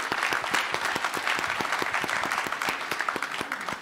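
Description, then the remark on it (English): A crowd claps steadily for the speakers on stage, the dense patter of many hands forming a continuous, moderately loud wash of applause with no voices on top. “Okay, so let's go ahead and give them a round of applause before we go into our resources.”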